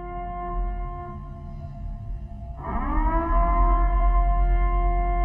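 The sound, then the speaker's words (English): A steady, droning alarm siren sound effect on News Radio 930 WBEN marking storm coverage, with stacked harmonic tones, growing louder and rising in pitch partway through before holding a sustained wail; no voices. “Sound the alarms.”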